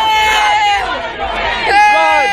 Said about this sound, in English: Yet the chanting and booing forced the Prime Minister to abruptly end his visit.